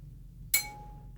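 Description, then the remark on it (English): A single bright bell ding rings out to signal that it is over, with a sharp metallic strike, then a thin, high tone lingers and fades over the next half second against a low background hum. “There's your bell for this is over.”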